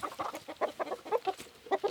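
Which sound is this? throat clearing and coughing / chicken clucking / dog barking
chicken clucking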